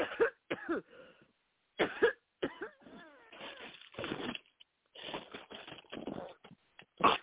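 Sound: people coughing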